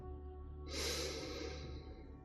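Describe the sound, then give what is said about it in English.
A single slow, deep breath of an animal falling asleep, drawn out over more than a second, soft and airy, rising from a low steady hum that continues throughout. No one speaks. “And its breathing becomes a lot deeper and more rhythmic, slower. It's gone to sleep.”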